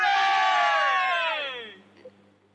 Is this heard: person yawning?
no